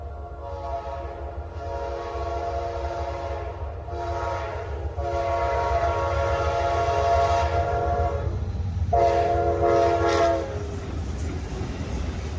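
A passenger train rolls along with a steady, heavy low rumble, while long, bright horn tones sound several times, swelling and breaking off over the rhythmic rail noise. No one speaks.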